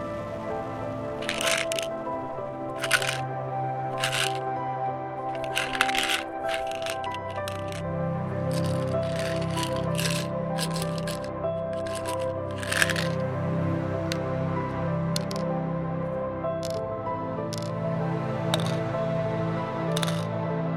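A medicine pill bottle rattles in a bathroom cabinet as a pill is taken out: irregular bursts of sharp, dry clicking and shaking, about a dozen in all, over a steady low humming drone, with no voices.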